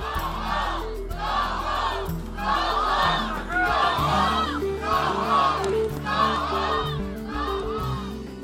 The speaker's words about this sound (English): In Dayton, crowds chanted, "Do something," as his motorcade drove by.